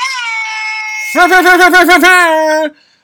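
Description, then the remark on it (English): A voice imitates a Jamaican air horn at 1 a.m. on the East Coast: a held, high, nasal blare drops into a lower tone pulsed in a quick stuttering run of about eight blasts, then cuts off abruptly. “on the East Coast and I'm here making Jamaican air horn sounds.”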